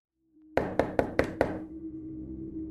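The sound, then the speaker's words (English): Five quick, firm knocks on a front door in a steady, even rhythm, loud, followed by a low lingering hum as the room settles. “The cracking at the front door startled the older gentleman.”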